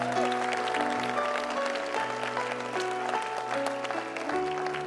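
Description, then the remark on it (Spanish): An audience at an Iglesia de la Roca church service applauds, a dense, steady patter of many hands clapping for about five seconds, with sustained keyboard chords holding underneath. “Damos un aplauso a ellos.”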